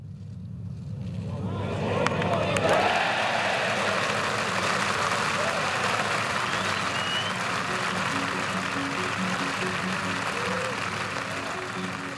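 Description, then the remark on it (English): A golf crowd at the 149th Open at Royal St George's in 2021 roars and applauds, the noise swelling over the first two seconds into a loud, dense, sustained wash of clapping and cheering that holds steady for about ten seconds. “Oh, listen to that roar.”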